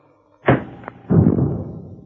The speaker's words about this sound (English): I got a tear gas bomb here. I'll toss it in through the door.